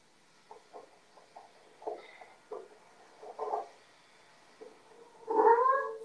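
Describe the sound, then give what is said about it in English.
A cat makes a run of short, soft mewing chirps, then breaks into one loud, drawn-out yowl at the end, with no voices. “Girl, obviously the cat trying to save your life.”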